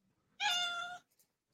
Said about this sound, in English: A cat. I'm like, whose cat is it? That is Nala.